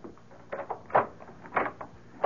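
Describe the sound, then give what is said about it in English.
A door is unlocked and opened: a few short clunks and rattles of the latch and handle in quick succession, followed by the scrape of the door swinging, with no voices. “Why have you got the door locked?”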